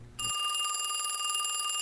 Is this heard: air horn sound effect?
no